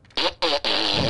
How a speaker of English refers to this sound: Oh yes. Oh man. Is that a wet fart? Sorry. So many beans. Felt like a, well, might feel like a wet one. No? I guess that one was dry.